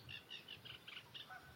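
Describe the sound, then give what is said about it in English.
A Cetti's warbler's explosive song: a quick run of about seven loud, sharp, repeated notes in a steady rhythm, ringing out clearly over a low background rumble, beside Llangos Lake by a thicket of ash trees and hawthorns. “Oh, there's a Setti's warbler.”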